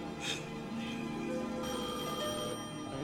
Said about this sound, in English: Answer that phone. She got to be there.